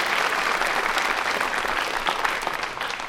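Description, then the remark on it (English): An audience claps for itself steadily, a dense wash of many hands with scattered sharper claps poking through, holding loud and even throughout with no voices. “I like that you're applauding for yourself there, by the way.”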